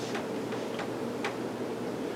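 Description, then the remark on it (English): A clock ticks softly and steadily, a few crisp clicks spaced about every half second over a low, constant background hiss, with no voices present. “Now, there are people in the world that think just because that clock is ticking, you listen to me now, when the clock is ticking, they think things happen.”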